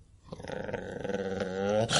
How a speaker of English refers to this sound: And just as you kind of get watching as it's like booking it down the hall, you hear a deep rumbling growl from around the corner.